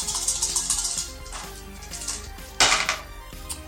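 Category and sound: dice being rolled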